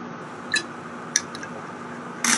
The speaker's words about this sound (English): So, excuse me, I'm just having a little drink of my lemon water here because I'm talking a lot, you know, straight ahead here.